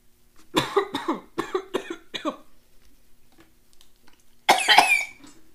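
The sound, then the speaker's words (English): A quick run of five harsh, rasping coughs, then a brief quiet and one longer, louder hacking cough. No one speaks. “Yes, I have a terrible cough.”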